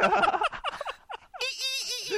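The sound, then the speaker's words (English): A person voices a dolphin squeal. Quick choppy chirping sounds lead into a sustained, high-pitched squeal that wobbles up and down in pitch for about a second. “What do dolphins sound like?”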